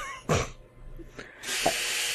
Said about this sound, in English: Well, the dryer's done. Oh, I thought that was the feds kicking in your door and seizing all your recording equipment.